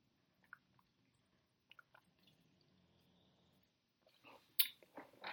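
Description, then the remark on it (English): A few faint wet clicks, then a soft slurping sip of Omni Brewing Company's Iron Lotus New England Hazy IPA from Maple Grove, Minnesota, and a gulp or two of swallowing, with no one talking. “I've tried a few beers from them, but I'm gonna have sip one here for all the people at home at sip one.”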